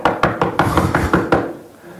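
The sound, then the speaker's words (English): A quick run of about eight firm, steady knocks on a wooden door, followed by a short fading quiet with no voices. “a knock on the door of your heart. And he knocks.”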